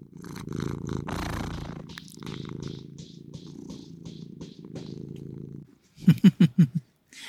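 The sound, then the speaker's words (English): An all-white, long-haired female Turkish Angora cat purring, a steady low rumbling drone for several seconds, ending in a few louder, rhythmic purr pulses before going quiet. “Oh, here, want to purr for everybody.”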